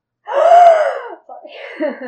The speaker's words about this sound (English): Felt like something was necessary there, and it was either dramatic music or a gasp, so I went to gasp.